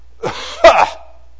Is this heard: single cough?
yes